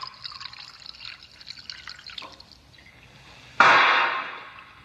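Wine trickles into a glass with a thin, bright gurgle that thins out, then a sudden louder splash of pouring liquid gushes in and slowly fades. No one speaks.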